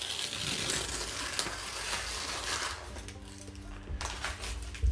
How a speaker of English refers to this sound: I'm opening that paper. Did you hear that? I like the way you did that near the microphone.